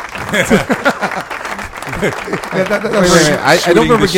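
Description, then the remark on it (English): A burst of recorded applause played from a soundboard as a guest is introduced, a steady hiss of clapping that swells toward the end, plays under several people talking loudly over one another. “I don't remember getting an applause when my name was announced.”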